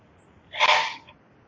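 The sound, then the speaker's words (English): A single short, breathy burst like a cough or sharp exhale lasts about half a second and rises quickly before fading, heard on its own with no talking. “Okay, I'm getting somebody breathing or coughing in the background.”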